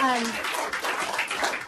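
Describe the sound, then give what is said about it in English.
Steady applause from an audience at the end of a research talk on childhood obesity, a dense crackle of many hands clapping that holds at an even level throughout, with a voice briefly audible at the start. “Well, you can clap. Go ahead.”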